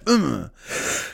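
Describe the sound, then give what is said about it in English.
A fairly loud fit of coughing and throat clearing: a voiced, groaning rasp that drops in pitch, followed by a breathy, hoarse rush of air. “I'm sitting here talking at a goddamn light speed, and then the next thing you know, I'm fucking coughing up a lung.”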